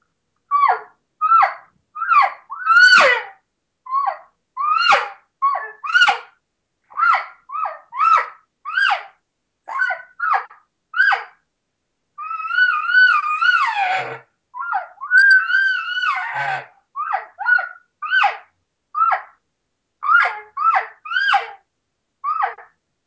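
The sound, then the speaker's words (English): A Rival double green-reed elk call blown in a rapid series of short, high, nasal elk cow mews, broken by a couple of longer wavering estrus whines that rise and fall, with no talking. “Those are some of the sounds that, you know, we're getting from the Rival reed and some of the cow call stuff and a couple estrus whines there mixed in there.”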